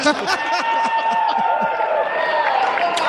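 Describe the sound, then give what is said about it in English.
A live audience at Star Wars Celebration reacts loudly and continuously, many voices mixing into a dense wash of cheers, chatter and scattered laughter that fills the whole moment without a break. “Listen to the crowd.”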